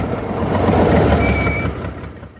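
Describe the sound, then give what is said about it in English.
The Mirthmobile car from Wayne's World drives along with a steady, loud low engine rumble and road noise, and a thin high whine briefly rises over it partway through. No one speaks. “Ah, the Mirthmobile.”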